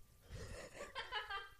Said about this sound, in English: I don't think I've ever really watched you sneeze before. That was. It's a sight to behold, truly. Yeah. My gosh, you have a funny sneeze.